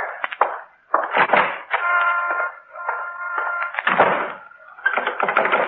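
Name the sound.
front door being locked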